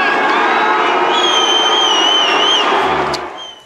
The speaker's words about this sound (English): The crowd drowned her multiple times, and she had to ask them to stop before continuing. So there they are. Who knew that Australian tennis fans were so rough?